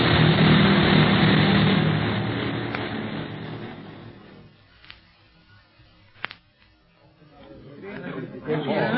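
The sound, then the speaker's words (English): A plane out of control in a nosedive crash-lands outside the city walls of Kano: a loud, rough roar that slowly dies away, two sharp cracks in the lull, then noise swelling again, with murmuring voices mixed in. “The plane might catch on fire at any minute. It's a bad crack-up.”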